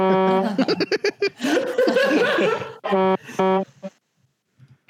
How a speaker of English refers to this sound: Yeah, I sure wish I forgot to clip out your air horn noises. Otherwise, I would love that. Yeah. That's my air horn.